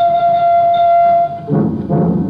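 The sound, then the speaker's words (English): A theatre organ's train whistle effect sounds one long, steady, reedy tone, then breaks into two breathy, puffing bursts like a steam engine chuffing. It is fairly loud, with no talking. “If you'd like to hear one or two of the train whistle, for instance.”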